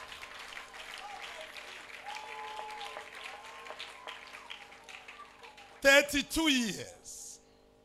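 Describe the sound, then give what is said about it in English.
A church audience claps steadily for several seconds at a Thanksgiving for 32 years of a couple's marriage, a dense, even patter. Loud, high, swooping voices then cry out over the fading applause near the end. “If you want to clap, go ahead.”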